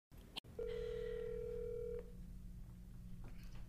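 A telephone line ringing: one steady electronic ring tone holds for about a second and a half, then cuts off, leaving a low background hum. No one speaks.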